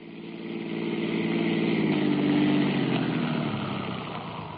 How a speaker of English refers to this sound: Dawson stopped the police car in front of my house.